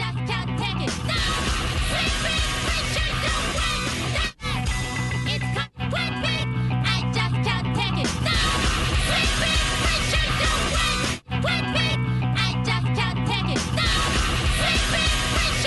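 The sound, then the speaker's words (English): In a played recording, a woman shouts and yells loudly and almost nonstop over a dense, harsh wall of sound, broken only by a few split-second silences. “It's after she's doing a bunch of shouting.”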